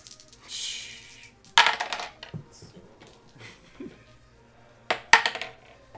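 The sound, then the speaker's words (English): A handful of dice clatters onto a hard table twice, each roll a sharp burst of rattling clicks that quickly settles, with quieter background shuffling between the throws. “I need a lot of dice.”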